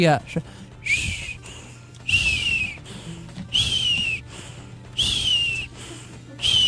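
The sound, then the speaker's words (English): A voice imitates the wheezy breathing of a 90-year-old woman working out in a Richard Simmons exercise class: four drawn-out, high whistling wheezes, each sliding slightly downward, separated by short rough breaths at a steady, labored rhythm. “there's a 90-year-old woman in there that works out, and she scares the daylights out of me because she this is what she sounds like breathing.”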